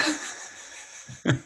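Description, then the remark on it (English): A dog breathes loudly with a raspy, wheezing hiss that drags on for about a second, then ends in a short, rougher huff. No one talks. “I've not gotten him checked out because he seems to be doing all right, but he is the loudest breather when you exercise him.”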